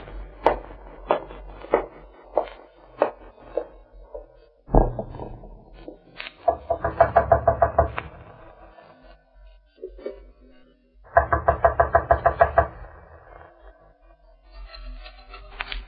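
Someone knocks on a locked wooden door: a run of sharp, evenly spaced knocks, then two louder bursts of rapid pounding, with quiet pauses between. No one speaks.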